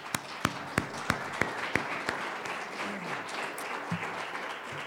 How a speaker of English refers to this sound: So let's begin by giving them a round of applause.